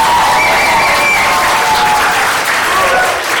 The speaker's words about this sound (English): So, round of applause for this most vigorous of debating crews.